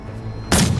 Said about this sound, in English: The force of the shot knocks Lobo out of our arms.